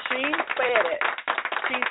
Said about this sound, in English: Wait a minute. Where's my applause button when I need it? There you go.